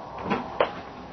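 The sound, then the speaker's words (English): A door on a ship swings open: a brief rubbing creak followed by a sharp wooden knock, quick, with no one speaking. “swing that door open, please, will you?”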